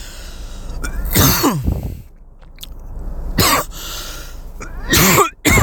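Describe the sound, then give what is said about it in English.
Repeated harsh coughs burst out in three clusters, each a rough, raspy hack with throaty, strained breaths between them, loud and unaccompanied by speech. “Sorry, I'm coughing over here. I'm coughing up lungs and shit.”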